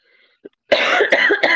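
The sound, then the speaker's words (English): A loud cough bursts out after a brief quiet moment, with a couple of harsh rasping pulses trailing into throat clearing. “Because, okay, I have to cough. I apologize.”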